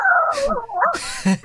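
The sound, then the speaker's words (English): A person uses buccal speech, the cheek-produced technique of Donald Duck's voice, to imitate a pug barking: squeezy, strained sounds, a few whiny, rising yips followed by harsher, breathy bursts, fairly loud with no other talk. “Before I was Donald Duck, I thought I'd use it as a pug, if I was barking like a pug.”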